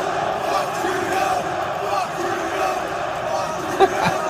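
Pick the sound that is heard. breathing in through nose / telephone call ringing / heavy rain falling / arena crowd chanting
arena crowd chanting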